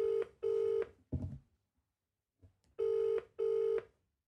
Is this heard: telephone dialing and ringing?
yes